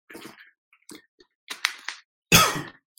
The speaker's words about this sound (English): Take some water real quick.